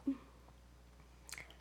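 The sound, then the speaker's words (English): A quiet sip from another person's drink: a soft bump, then a short wet slurp near the end, with no talking. “I have to have a sip of yours because I think I finished mine.”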